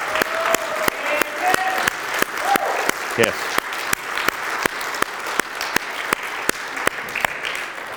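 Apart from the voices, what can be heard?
audience applause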